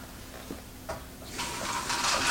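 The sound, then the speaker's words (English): Cool water pours steadily into a noodle cup up to its fill line, a hissing splash that starts after a couple of faint clicks and continues to the end, with no talking. “So you just kind of fill that up with some cool water.”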